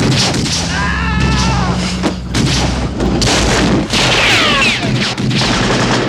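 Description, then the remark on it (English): Loud gunshots from a .30-30 Winchester rifle, recorded as the Indiana Jones gunshot, boom out in a dense, rumbling mix, with several heavy blasts and crashing reverberation layered over a constant low roar. “The actual Indiana Jones gunshot was a .30-30 Winchester rifle that was recorded.”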